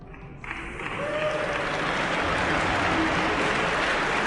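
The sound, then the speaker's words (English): A crowd's applause starts thin and tentative, then swells after a moment into steady, dense clapping that holds for several seconds with no one speaking. The audience is reacting to Steve Jobs announcing Apple's partnership with Microsoft on 6 August 1997. “You probably noticed that the crowd's response was hesitant.”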